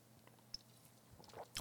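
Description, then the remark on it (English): Quiet mouth sounds of someone taking a sip of a branded drink: a few soft wet clicks and a brief slurp-like swish near the end, with no talking. “Let me just grab another sip of your brand here.”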